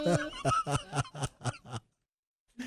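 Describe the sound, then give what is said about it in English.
A voice imitates a turkey gobbling: a quick, loud, warbling run of about seven throaty pulses that slow and fade, then a brief pause before another short burst begins. “…. Well done. Turkey.”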